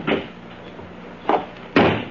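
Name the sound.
car door closing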